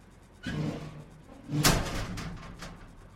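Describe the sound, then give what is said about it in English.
An inner office door slams open with a sharp, heavy bang, followed by a brief rattling of glasses on the desk; a softer thump comes just before, with no voices. “A second later, the inner office door slammed open, rattling glasses on the desk.”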